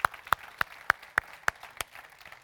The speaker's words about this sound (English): Would you give the Lord a big clap and thank Him? Thank you, Lord.